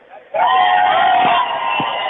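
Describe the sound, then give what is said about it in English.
A crowd at a FanDraft event erupts into loud, sustained cheering and shouting after a brief quieter moment, greeting iHeartRadio on the phone, a dense roar of many voices holding steady for about two seconds. “do you want to say hello to the crowd? Yeah, man. Let's hear them.”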